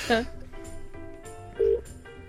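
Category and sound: signal or alarm, telephone number being dialed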